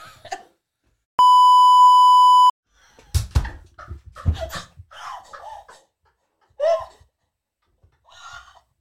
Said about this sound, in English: I'm just going to beep here.